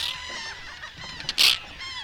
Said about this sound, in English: And all around us, terns begin to rocket down from the sky, dive bombing our heads in the microphone, making sharp, sonar-like warning calls inches from our faces.